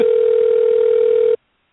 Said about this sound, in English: Good, because we're going to call our guest right now. So if you want to hang on. Okay. Is your phone ringing right now?